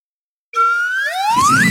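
A slide whistle plays one loud, steady glide that climbs smoothly from a low pitch to a high one over about a second, with a faint rumble underneath toward the end.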